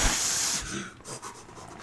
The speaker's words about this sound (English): I'm playing with this bottle cap.